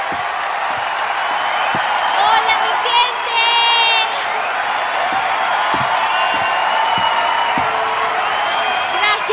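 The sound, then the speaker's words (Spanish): A crowd applauds and cheers steadily for several seconds as a performer is called to the stage, with high-pitched whoops and whistles rising above the noise around the middle and a dense, constant roar throughout. “Así que denle un fuerte aplauso para que venga al escenario.”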